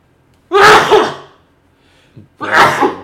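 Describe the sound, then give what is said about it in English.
Two loud sneezes about two seconds apart, each a sharp explosive burst that trails off, with a quick audible inhale just before the second one. “I'm gonna sneeze. Give me a second.”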